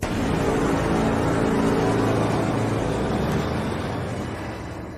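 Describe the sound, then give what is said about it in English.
A car engine roars loudly and steadily for several seconds, a thick rumbling drone that holds its intensity before easing off slightly at the end, with no voices present. “So send in the car.”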